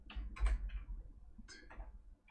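Keyboard typing: a handful of light, crisp clicks in irregular bursts, a short flurry, a pause, then a few more keystrokes, fairly quiet, with no voices.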